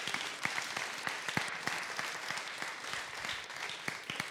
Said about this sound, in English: And then also, can we give another round of applause to all the tireless volunteers that made the festivities possible?